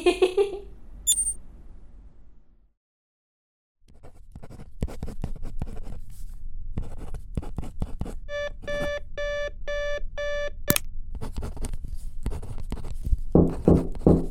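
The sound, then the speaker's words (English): A digital alarm clock beeps in rapid, shrill bursts for a couple of seconds over steady scratching of a pen on paper, then is switched off abruptly with a sharp click. “Heard you turn off your alarm.”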